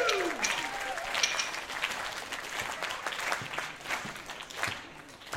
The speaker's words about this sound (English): And then you're going to turn that pulse into a wild round of applause as I introduce